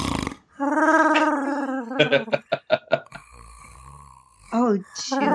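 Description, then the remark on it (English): A person imitates Chewbacca snoring: a loud, warbling growl, then a rapid run of choppy snorting pulses, a thin held whine, and one last short growl. “How does Chewbacca sleep when he snores?”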